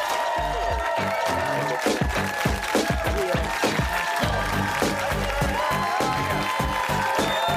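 A Real Time studio audience on Cinco de Mayo claps and cheers steadily, a dense wash of applause with whoops on top, while a deep rhythmic thump pulses underneath throughout.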